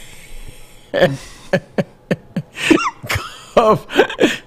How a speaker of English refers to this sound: Cough again for us, please.